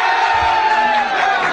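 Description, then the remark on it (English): A loud, sustained roar of a crowd cheering and whooping, dense and steady throughout with a bright, energetic wash of many voices, continuous. “Listen to the effing crowd.”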